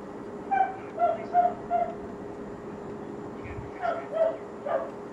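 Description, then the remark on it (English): A neighbor's dog barks, a quick run of four barks followed after a pause by three more, each short and moderately loud over a low steady background hum. “We should go watch the neighbors barking dog.”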